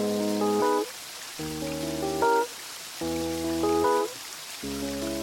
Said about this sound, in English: We have the sound of rain, of flowing water. Is that a river? Is it tears? Is it just the lachrymose mood of the song? I'm going to say it's probably a river of tears.